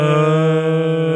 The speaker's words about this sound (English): Burp.